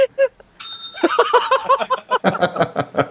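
A single bright bell ding rings out and lingers with a shimmering tail, quickly joined by several people laughing and giggling in rhythmic bursts.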